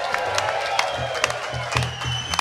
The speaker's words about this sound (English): Fucking round of applause for the boys.